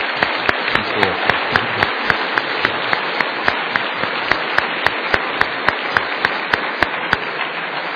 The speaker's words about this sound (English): And you know, the scriptures say, we don't generally clap in terms of performance here, but the scriptures say, clap your hands in thanksgiving and praise to God. Perhaps that would be appropriate to say, thank God.